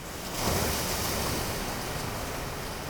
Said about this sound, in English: That's weird. The ocean is closer. Or we moved closer to it, but I didn't realize I was moving.